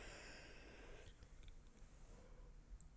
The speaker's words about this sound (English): Well, you keep yawning. It's like that time of day where me and the baby sleep.